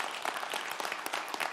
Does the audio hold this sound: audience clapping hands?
yes